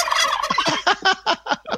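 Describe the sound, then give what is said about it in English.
A turkey gobbles loudly: a fast warbling rattle that breaks into several distinct, evenly spaced throaty bursts. No other sounds or voices accompany it. “Turkey?”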